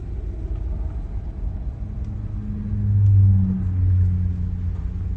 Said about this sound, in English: Obviously, you don't usually get to drive your car on this trail.